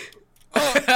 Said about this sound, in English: Oh my god, I need to fart. Oh, holy shit.